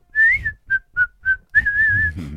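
A person whistles a short, bright, happy tune: a long rising note, three quick short notes, then a sustained wavering note, with a low rumble of background noise beneath.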